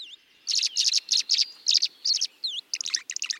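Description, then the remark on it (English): A swallow chirps in quick bright bursts, a run of twittering calls with a few downslurred notes mixed in, clear with no talking over it, as it glides low across a pond and skims water to drink on the wing. “Gliding low across a pond, a swallow tilts its wings upward, lowers its head to the water's surface, and skims a beakful of water on the wing.”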